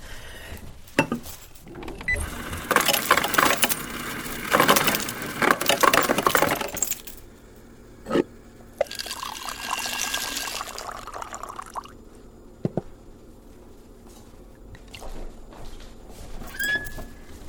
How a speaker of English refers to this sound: I put ice in it. I hope that's okay.